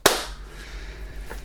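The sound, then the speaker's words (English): A single sharp, loud hand clap made by the hosts together after a count of three cracks out at the very start, then fades into quiet background hum with only a faint soft knock later on. No one speaks. “Oh no, we didn't do a clap.”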